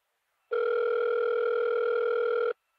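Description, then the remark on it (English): A telephone rings on the line: a single steady two-second ringback tone, clear and even, heard through the earpiece with no voices around it, then silence. “It's ringing.”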